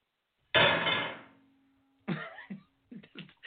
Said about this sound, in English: That's supposed to be impact, and it sounds like the jail when they slam the door on the jail.